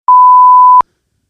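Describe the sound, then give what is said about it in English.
A recorder gives a single steady electronic beep as recording starts, at one clear mid-high pitch, lasting under a second with a clean start and a clicky cutoff, then silence. “You hit record again?”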